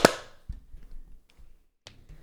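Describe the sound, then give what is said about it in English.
One sharp, loud hand clap for audio sync, with a quick, bright decay, followed by faint low rumbling noises and a softer clicking sound a moment later. “And we'll clap sync in 3, 2, 1.”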